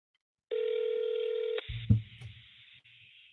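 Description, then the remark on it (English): A single steady electronic telephone ring tone of a call to a real estate office plays for about a second, then cuts off with a click and some low handling and rustling noise as the line is picked up. “Your partner's not picking up the phone.”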